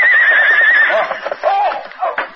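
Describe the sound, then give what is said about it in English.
A big paint horse galloping over the plains stumbles as a forefoot sinks into a prairie dog hole, letting out a loud whinny, a shrill quavering neigh that breaks into shorter falling snorts and cries over about two seconds, with no voices. “The big paint horse raced over the plains at a gallop. Suddenly, one of his forefeet sank into a hole made by a prairie dog.”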